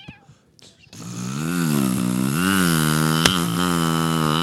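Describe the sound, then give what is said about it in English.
A person imitates a chainsaw with a loud, sustained buzzing drone from the throat, its pitch wavering up and down as if revving, after a brief quiet moment. “do your best impression of a chainsaw.”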